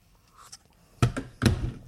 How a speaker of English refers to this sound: All right. Plastic cups. Yeah, they don't make a nice sound.